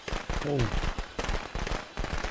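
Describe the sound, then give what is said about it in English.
Rapid, crackling bursts of firecrackers popping, a dense chain of sharp bangs filling the whole stretch with barely a pause, with a brief voice cutting in early. “Oh, firecrackers.”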